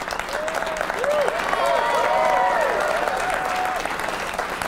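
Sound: round of applause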